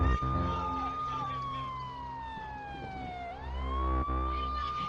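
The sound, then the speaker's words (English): A loud wailing emergency siren in a music track sample glides slowly downward, then swoops back up to its high pitch, sounding over a steady, rumbling low bass backdrop. “It only has like a few seconds of it, but there's like I like the drop that comes up a little bit, which is I got a sirens going.”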